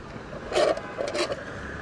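A paper straw rubbing against the plastic lid of a cup of iced coffee, making two short squeaky scrapes with a rough, raspy texture over a faint background hiss. No one speaks.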